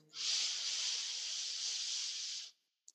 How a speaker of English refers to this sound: Have a breath in